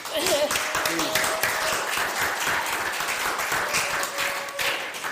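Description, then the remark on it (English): A crowd applauds steadily, many hands clapping in a dense, continuous patter with a few voices calling out faintly underneath. “I feel your clap.”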